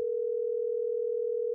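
A steady telephone dial tone at the start of a phone call hums continuously at a moderate level, unbroken and alone, with no voices over it.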